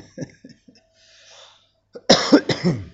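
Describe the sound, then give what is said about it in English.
A harsh, loud cough erupts very close to the microphone in two or three quick bursts, following a few soft, faint mouth sounds and a short quiet pause. “Sorry, I just coughed right into the microphone there.”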